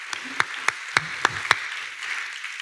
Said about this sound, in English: Yeah, give yourself an applause.